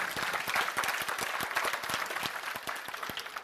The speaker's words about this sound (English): Well, somebody clap your hands like you know what I'm talking about.